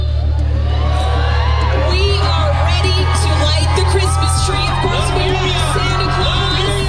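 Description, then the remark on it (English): A dense, shoulder-to-shoulder outdoor crowd whoops and cheers over a steady hubbub of babbling voices and music, with a constant low hum underneath, at a 2010 holiday Christmas tree-lighting celebration in Portland; the festive noise is loud and continuous throughout. “And there's music, and the crowd is, you know, shoulder to shoulder, and it's a party atmosphere.”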